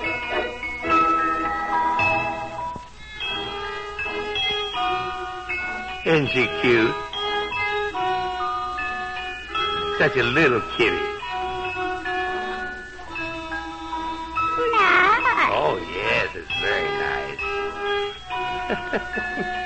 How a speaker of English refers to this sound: You know, Midnight the Cat... wants to play her cigar box fiddle for us today. Midnight plays... Nice. Oh, of course it's nice, Midnight. And now Midnight has her fiddle, so go ahead, Midnight, and put it under your chin and play your little piece.